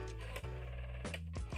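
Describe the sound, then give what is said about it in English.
A telephone rings with a loud, steady electronic tone that shifts pitch a couple of times over a second and a half, with no voices. “you can hold the phones, because I'm not picking up”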